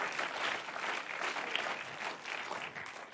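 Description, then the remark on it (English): An audience claps their hands to the Lord in thanks, a steady, sustained wash of applause, many overlapping claps blending into a dense, even roar with no voices standing out. “Can we just clap our hands to the Lord and thank Him for that?”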